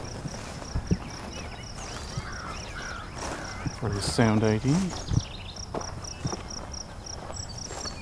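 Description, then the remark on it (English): Steady, evenly pulsed cricket chirps ring out across a meadow at the south end of Beverly Swamp, continuing throughout while a man speaks briefly partway through and faint rustles and knocks occur. “We're in a meadow here in the south end of Beverly Swamp. Lots of crickets here too.”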